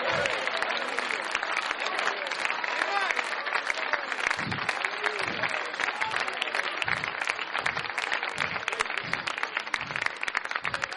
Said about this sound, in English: Oh, don't clap like you're clapping for me. Clap for Jesus. He's the one that deserves the praise.